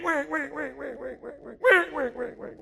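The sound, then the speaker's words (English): A voice imitates a duck call blown from a duck blind as a duck comes nearby, producing a rapid run of nasal quacks with one sharper, louder quack near the end, clear with nothing else behind it. “And the sun comes up, and the ducks start flying, and one comes nearby, and Boudreau gets down on that call.”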